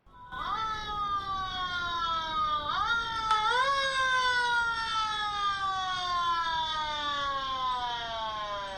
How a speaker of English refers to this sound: Whenever I stood to head back to my truck, I could faintly hear the sound of a siren. But not a modern siren, like the old sirens.